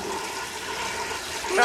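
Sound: toilet flushing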